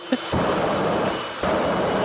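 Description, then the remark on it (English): A voice makes a loud, sustained hissing, rushing noise, imitating air escaping from a blown-up balloon that is let go, used to illustrate the thrust power of a jet-powered car, steady for nearly two seconds after a brief short onset. “Everybody's blown up a balloon and then let go of it, and it goes...”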